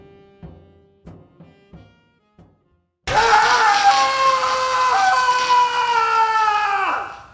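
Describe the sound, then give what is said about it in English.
A man lets out a long, loud, strained scream that holds for about four seconds and then breaks off, coming after a few short muffled knocks and grunts. “Yeah, that screaming idiot's me.”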